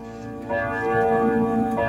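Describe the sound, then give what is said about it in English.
A grandfather clock chimes loudly, its ringing bell tones overlapping and sustaining, with a new stroke swelling in about halfway through and another near the end. “It is a grandfather clock.”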